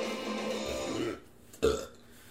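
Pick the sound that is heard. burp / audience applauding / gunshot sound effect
burp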